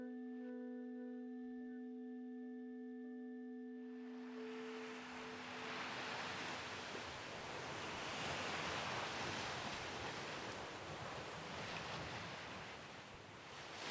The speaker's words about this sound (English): So, kind of hoping you guys could hear the ocean just then.